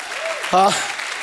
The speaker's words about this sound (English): Give God a hand clap. Somebody in the house, give God a hand clap. Give God a hand clap.